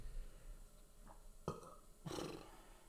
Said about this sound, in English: What? I'm fucking burping, dude. I want to burp into the mic.